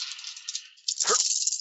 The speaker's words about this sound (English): Perception check to find who I'm looking for. Yes. All right. We'll roll dice for the first time all game.